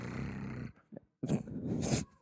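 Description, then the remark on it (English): A man imitates a growl at a woman: a gravelly, rumbling snarl, a short pause with a small grunt, then a second, rougher growl that rises and cuts off. “That was my poor attempt at growling at a chick.”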